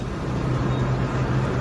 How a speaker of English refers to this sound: That car's fine. It goes by. Going through the intersection.